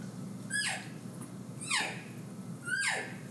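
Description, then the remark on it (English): Three short cow elk calls blown on a diaphragm call, each a high, whiny mew that slides downward, spaced about a second apart over a low background rumble. “So learn a diaphragm, cow call, simple cow call. I give that cow call.”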